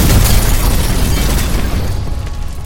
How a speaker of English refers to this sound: Cowcatcher triangles exploded, meeting point to point at high velocity over the ravine.